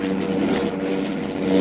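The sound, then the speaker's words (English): Engines of a heavily loaded airplane drone steadily with a rough, labored tone, a dense low-to-mid rumble that sounds strained as if struggling in the cold, with a brief faint click partway through. “Cold, and with the load on that plane, the motors can't take it.”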